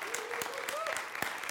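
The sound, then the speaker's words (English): An audience claps their hands in a steady, dense burst of applause as a clap offering to God during a church sermon, with a few raised voices faintly mixed in beneath the clapping. “How many can give God a clap offering this time?”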